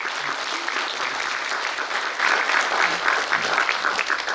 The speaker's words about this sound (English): A big round of applause for him.